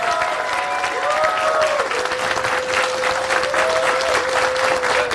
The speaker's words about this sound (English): So a round of applause for everybody coming out today.